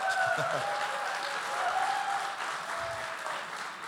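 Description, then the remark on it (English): A church audience claps steadily for the pastor being there after he and his wife were rear-ended in a car that week, in a dense, continuous wash of applause that holds at an even loudness throughout, with a few faint tonal tones threading beneath the clapping. “The reason why they're clapping is because my wife and I got rear-ended this week”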